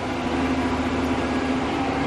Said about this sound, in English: Gonna wait for this truck to pass by.